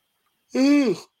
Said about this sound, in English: I just yawned. It just overtook me anyway.